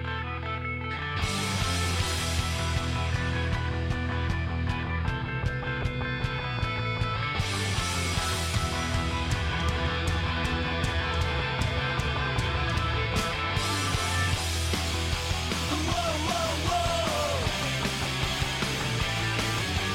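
A loud hard rock track used as an entrance theme plays steadily throughout, with dense distorted guitars and a driving, regular drumbeat filling the mix, and no voices talking over it.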